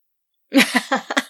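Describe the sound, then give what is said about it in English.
A creature's maw coughs up swallowed cigarettes: after a moment of silence its throat hacks and coughs in four or five quick, guttural bursts, fairly loud with a wet, voice-like retching quality. “It's trying to spit something out. And then you see it cough up your cigarettes.”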